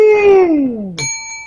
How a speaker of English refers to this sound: when I ring the bell, you may fight it out. Right, starting now!